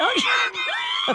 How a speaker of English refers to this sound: Honestly, I don't know if I should make fun of these people for having 911 called on them or be more concerned that I was screaming like that. And nobody called 911.